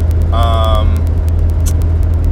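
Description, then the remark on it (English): Steady, loud low rumble of road and engine noise inside a moving car as the driver heads to pick up an engagement ring, with a brief high-pitched tonal whine near the start and faint rhythmic ticking throughout. “I'm doing it in the car, clearly.”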